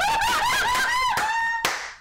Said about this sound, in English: What? Oh, God. Sorry, I don't mean to clap.